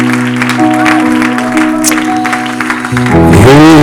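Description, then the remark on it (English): An audience at a church service claps together in a steady, loud wash of applause, over sustained organ or keyboard chords, with a swelling musical flourish near the end. “If you believe it, clap your hands unto the Lord.”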